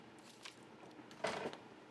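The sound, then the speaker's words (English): Scissors cutting with a few quiet, crisp snips: a soft pair early on, then a sharper, louder crunchy cut near the end, with no talking. “I'm a wild boar with the scissors, so watch out.”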